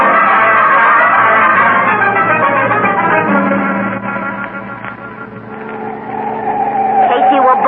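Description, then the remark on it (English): A car roars at speed through turns while following another car, its tires squealing and skidding in loud bursts, with a rising screech near the end and voices mixed in underneath. “I've still got two wheels on the ground.”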